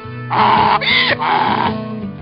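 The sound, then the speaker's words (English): A loud bray from the donkey Ramrod, a harsh wheezing call that swings between a high squeal and lower rasping tones over about two seconds, with no talking around it. “And as Joseph and his donkey Ramrod left his home...”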